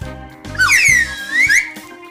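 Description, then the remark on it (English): A slide whistle swoops down in pitch and then back up in one smooth, loud glide, played on its own with no talking. “We don't usually do a slide whistle at the beginning, right?”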